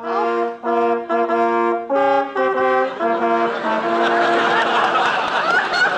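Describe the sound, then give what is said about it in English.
A hearse, the car of Digger Odell the undertaker, drives up, sounding a string of sustained, mournful horn notes before a steady engine rumble and noise takes over, fairly loud, with no one talking. “But did he have to drive up in a hearse?”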